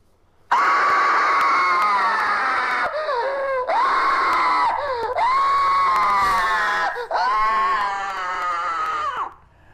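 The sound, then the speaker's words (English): Loud, agonized male screaming by actors in long sustained howls broken by a few brief gaps, made to sound like someone burning in hell, with several anguished voices seemingly layered together. “So that was people that he was getting all the actors to make it sound like you're burning in hell,”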